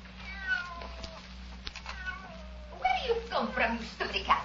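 A cat meows several times in drawn-out, wavering cries, growing louder and more strained toward the end, over a steady low hum.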